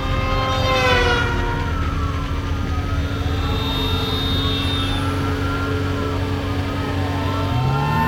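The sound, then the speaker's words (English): Sirens of five police cars wail at once during a car chase, their rising and falling tones overlapping loudly over a steady engine rumble, as the pursuit closes in. No one speaks. “They blockaded the on-ramp. I see it. Can we outrun 5 cop cars?”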